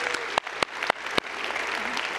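An audience claps steadily, giving the Lord a round of applause: a dense wash of many hands with a few sharper individual claps standing out, and faint voices mixed into the applause throughout.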